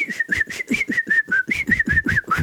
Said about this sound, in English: And then it said, during the 2 minutes, you might want to whistle with your nose.